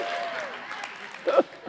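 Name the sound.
audience clapping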